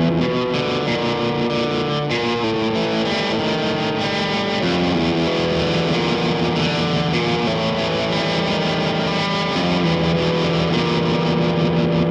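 Electric guitar drenched in tremolo and reverb plays slow, sustained chords and ringing notes in a dry Western style, loud and continuous throughout, with a wavering, shimmering tone and no voices.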